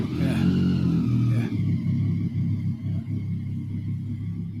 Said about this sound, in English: That sounds like a Harley Davidson. I think it's a 750. I think it's a Triumph Tiger. I'm not good. I guess it gets 750 is probably about the right realm.